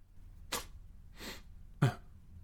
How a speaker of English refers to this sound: The monkey gave a thoughtful sniff, as if he were trying to figure a way to explain a grand idea to a couple simpletons.